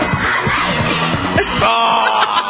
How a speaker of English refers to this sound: I found the opening to the game show. It's amazing. I remember that for some reason. Just look. Oh, all the kids cheering. I remember that music.